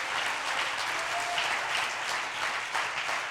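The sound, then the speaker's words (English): A church audience claps hands to praise God in thanks for its preachers, a sustained, dense wash of applause lasting the whole stretch, steady and fairly loud with no talking over it. “If you're thankful for that, clap your hands and praise God.”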